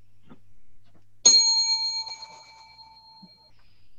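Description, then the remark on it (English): A single bright bell is struck once, its clear metallic tone ringing out and slowly fading over a couple of seconds with nothing else around it. “All right, so I'm going to ring this bell, and y'all are going to go at it.”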